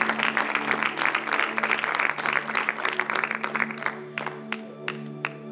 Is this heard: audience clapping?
yes